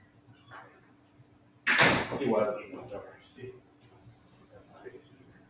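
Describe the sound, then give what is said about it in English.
A door slams once, a loud sharp bang with a short rattling decay, followed by faint shuffling and murmured voices. “The door will fuck you up.”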